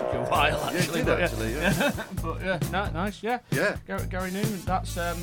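An 80s-style electronic library track with deep, steady synth bass notes under gliding, wavering synthesizer lead lines, playing loud and up close for a few seconds.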